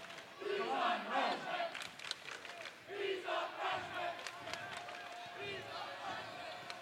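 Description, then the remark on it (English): A large indoor basketball crowd roars and cheers loudly and steadily, a dense wash of shouting voices swelling and ebbing, with sharp squeaks and thuds cutting through now and then. “You heard the crowd.”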